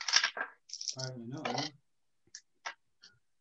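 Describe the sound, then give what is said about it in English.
A person talks briefly, then dice clatter onto a table in three light, separate clicks, sparse and fairly faint, tapering off as they settle. “Yeah, that was what I was saying we needed to roll for.”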